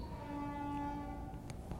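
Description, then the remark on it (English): An ambulance siren sounds outside as a steady, sustained tone with a layered harmonic hum, holding one pitch at moderate loudness over a low rumbling background, with no one speaking. “Do you hear that ambulance?”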